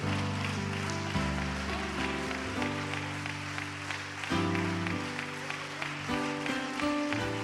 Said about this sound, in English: Come on, let's take just a minute. Don't just clap your hands. Do it to Him. Do it for Him.